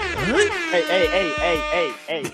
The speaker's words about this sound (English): I'll take the air horn back.